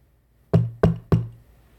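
Three firm knocks on an already ajar door of a studio apartment, in quick, even succession, each a sharp low thud with a short resonant decay, with silence before and after.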